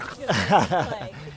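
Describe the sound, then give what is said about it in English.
A Shiba puppy lets out a short, warbling whine that rises and falls in pitch several times, fairly loud, lasting just over a second. “What kind of dog is that? Sheba. Oh, is it a puppy?”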